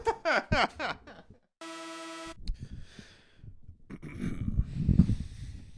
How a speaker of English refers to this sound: That's a good cough.